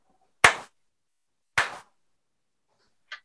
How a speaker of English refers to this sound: I think the claps can act as markers to the editors.